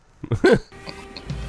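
A short, loud, buzzy D-stat fart sound effect soundbite bursts out for about half a second, then gives way to a faint, low background hum with a few soft tones.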